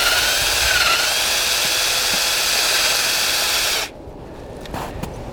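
A cordless drill whirs loudly and steadily as it bores a tap hole into a maple tree in a sugar bush for nearly four seconds, then cuts off abruptly, leaving a couple of faint knocks in the quiet.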